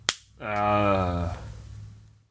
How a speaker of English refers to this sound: The clap was great. That didn't sound right, but whatever.